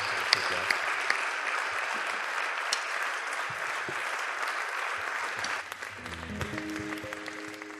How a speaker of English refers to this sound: So please give Dan another round of applause as the band gets ready for the next song.